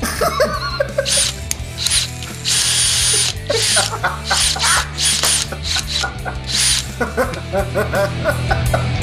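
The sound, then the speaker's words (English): Several power drills whir in loud bursts, their revving pitches rising and falling to play the tune of Hail to the Chief alongside a harmonica melody, with no talking. “Square 50's guys is going to put a band together where the main instrument is harmonica and the secondary instrument is the drill. I'm sorry, a chorus of drills.”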